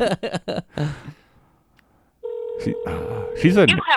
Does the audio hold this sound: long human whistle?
no